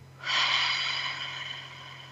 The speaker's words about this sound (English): So take a moment, put both feet on the floor, feel it supporting you, and take a deep breath in through your nose, out through your mouth like through a straw.